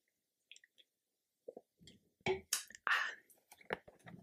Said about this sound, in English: I'm going to be very rude. I'm going to have a sip of my drink. I'm so sorry.